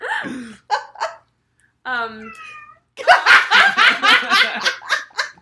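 A cat named Tommy, wanting to be let outside, gives one drawn-out, plaintive meow after a few short vocal bursts, and then people break into loud, rhythmic laughter.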